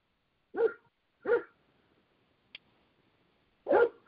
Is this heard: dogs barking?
yes